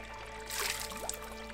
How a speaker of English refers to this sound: Dip your hand into the creek.